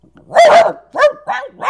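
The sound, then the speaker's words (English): A person imitates a dog barking: one long, drawn-out woof followed by three shorter, sharp barks in quick succession, loud, with no other talking. “Yeah, you want to do your barking imitation now.”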